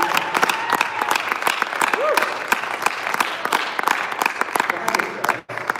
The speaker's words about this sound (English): In fact, you can offer him a clap offering. Why don't we give him a clap offering right now?